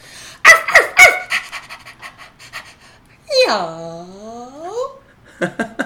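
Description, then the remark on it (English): A person imitates a dog: a few sharp, breathy panting huffs, then a drawn-out, whiny yawn that sweeps down and trails off, with brief huffing at the end. “That's how my dog yawns.”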